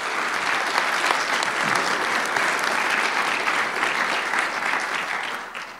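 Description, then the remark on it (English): An audience claps steadily for Wondery and Art19 for several seconds, a dense, even wash of many hands that stays loud throughout and tapers slightly at the end. “And before I go any further, I would love it if you would give a round of applause to Wondery and Art19 for writing that check.”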